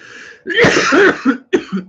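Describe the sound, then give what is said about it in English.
A person coughs loudly and harshly, a rough burst followed by a couple of shorter, throaty coughs, with no talking. “Sorry for the cough. I've been coughing a lot today.”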